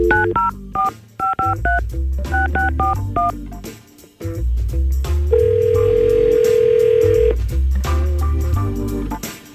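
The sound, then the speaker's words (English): Rapid touch-tone keypad beeps dial a number on an outgoing call to a woman, then a single steady ringback tone sounds for about two seconds before more dialing beeps, all over a loud music bed with no talking. “So we'll try and call Jenny, get her on the phone”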